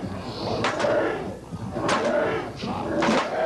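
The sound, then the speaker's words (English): A rowdy crowd fills the space with overlapping shouts and loud commotion, a few sharper yells and bangs bursting out every second or so above the constant din. “It's getting a bit rowdy.”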